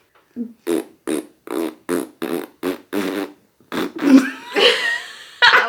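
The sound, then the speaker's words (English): A series of rhythmic mouth-made fart noises, about a dozen short raspy bursts in a steady pattern, with pitch shifts toward the end as if tracing a melody. “The first five farts are like the same note.”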